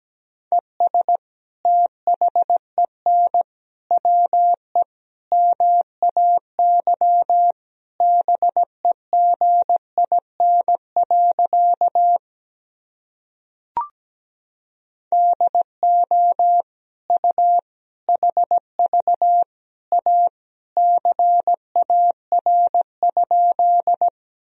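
Morse code sent at about 17 words per minute, spelling practice sentences from the top 300 words and abbreviations: a single steady mid-pitched beep keyed into quick dots and dashes, with a short pause and a faint click partway through. No voices.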